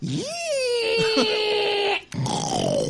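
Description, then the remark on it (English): A person imitates a pig call with a loud voice: a squealing cry that rises, holds steady for about two seconds, breaks off briefly, then returns as a slowly falling squeal. “Pigs call with a pigs impression all rolled into one.”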